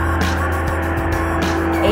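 Car tires squeal in a steady, sustained screech over a continuous engine rumble, fairly loud for the whole stretch, with no talking.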